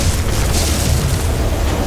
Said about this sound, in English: Suddenly, the ground detonated upwards. Marble, rock, and other alien materials careening against the walls and ceiling.